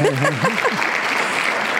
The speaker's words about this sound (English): And so why not learn how to negotiate like a boss from the boss himself? And so round of applause.